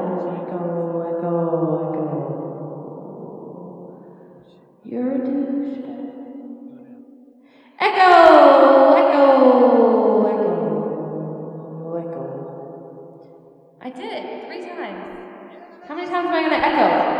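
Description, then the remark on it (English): A voice run through a heavy echo effect from a mixer, with several loud vocal bursts that each trail off into long, smeared, fading repeats, prominent, with no clear words. “It already does the echo.”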